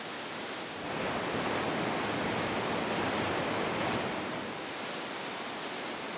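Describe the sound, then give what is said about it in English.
A steady, full-bodied roar of a gushing mountain stream cascading down the mountainside, fed by glacial water and rain, swelling after the first second and holding strong before easing slightly toward the end, with no voices. “What starts as a trickle soon becomes a gushing cascade, gathering in force both above and below the ground.”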